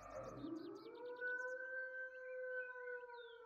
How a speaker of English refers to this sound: and you suddenly hear a wolf scream in the distance.